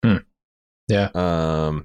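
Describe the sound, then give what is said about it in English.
A man's panting and groaning on a soundtrack as he tries to make a jump for it: a short grunt, a pause, then a clipped vocal burst running into a long, strained groan, fairly loud, with no words spoken. “There's this weird panting and groaning that's on the soundtrack where he feels like he's a trapped animal or something.”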